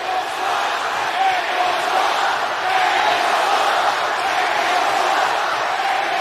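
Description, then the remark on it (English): A large crowd roars and chants disparaging remarks together in a steady, dense wall of voices that stays loud and unbroken throughout, with no single speaker standing out. “Crowd chanting up disparaging remarks.”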